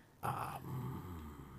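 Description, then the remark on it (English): A person's low, throaty grumble during an argument rumbles for over a second, starting with a brief rough burst and then settling into a steady guttural growl, with no words spoken. “are you growling? I was just, it's like a little grumble.”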